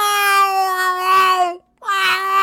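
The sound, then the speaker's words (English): A voice imitates a cat yowling with two loud, drawn-out wails. The first holds a steady, nasal pitch for over a second; after a brief pause, the second dips low and then rises back. “You ever heard a cat yowl?”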